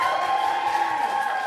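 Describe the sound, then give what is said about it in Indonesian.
A steady wash of crowd noise, like an audience at a radio event cheering and clapping for themselves, holds at an even, fairly loud level for the whole moment with no talking over it. “Tapi teman-teman, tepuk tangan dulu buat kalian semua karena aku senang banget ternyata masih ada yang senang sama radio. Boleh tepuk tangan.”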